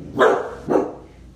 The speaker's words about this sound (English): My dog agrees. Keeper agrees. Amen, Keeper? Amen? Yes. Any noise he hears, he will start barking.